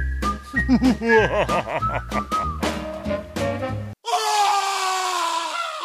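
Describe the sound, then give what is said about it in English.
Intro music for the Whistling Through the Graveyard segment: a short musical intro with a bending, whistled-sounding melody over a low bass line, then an abrupt switch to a denser, hissy passage with a sustained tone. No one speaks. “There's our intro music.”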